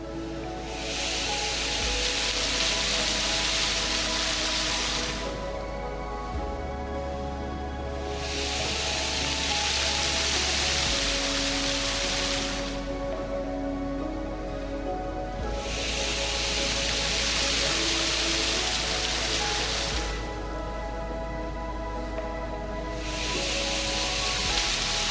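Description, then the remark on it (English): A water fountain at Marina Barrage in Singapore, providing an aquatic display, splashes in a dense, steady hiss that swells and eases in regular cycles about every seven seconds, with no voices, just continuous rushing spray. “The roof tapers downwards in a gentle curve so visitors can get back to the main level where a water fountain provides an aquatic liquid display.”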